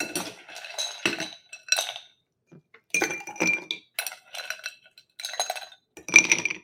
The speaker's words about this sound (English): Next thing I'm going to do is I'm going to take some ice and put it in the mixing glass.